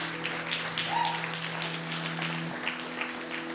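A church audience applauding, steady dense clapping at moderate loudness throughout, with a low sustained hum underneath that shifts pitch slightly partway through.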